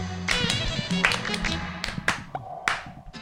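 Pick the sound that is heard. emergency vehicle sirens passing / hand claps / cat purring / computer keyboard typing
hand claps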